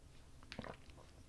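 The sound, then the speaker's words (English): A quiet sip from a drink: a brief slurp with soft wet mouth noises and a swallow, then a small click at the very end. No one speaks. “Sip number two.”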